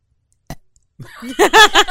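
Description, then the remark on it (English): A short, low, voiced contented burp, made by a person imitating the sound, quickly breaks into a few bursts of giggly laughter; fairly loud. “So Flipto stands, stretches, and burps contentedly.”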